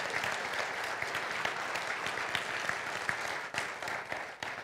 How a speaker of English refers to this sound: Yeah, let's clap for them. We love and appreciate them.